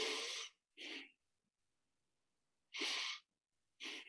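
Sharp nasal breaths repeat in a quick, uneven rhythm: two rapid hissing sniffs, a pause of about a second and a half, then two more bursts, each broad and airy with no talking.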